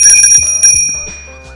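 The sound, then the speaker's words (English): A bell is rung, its bright, clear tones ringing loud at first and then slowly fading, with a few soft clicks as it sounds. No one speaks. “I just rang the bell.”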